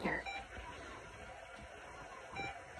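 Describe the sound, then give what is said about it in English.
Two short electronic beeps from an operating room machine, about two seconds apart, fairly quiet over a steady hum of room noise, with faint murmuring voices in the background. “We're actually in the operating room with the machine beeping here.”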